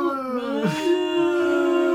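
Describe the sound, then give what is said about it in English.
A voice imitates dinosaurs yelling together, producing a sustained, wavering howl-like cry with a brief rising whoop partway through, steady and fairly loud for about two seconds. “And it just, he stops, they all yell at him, and he backs away.”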